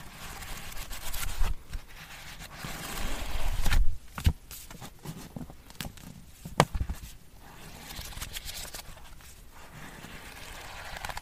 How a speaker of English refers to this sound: Sounds of paper. Quite relaxing.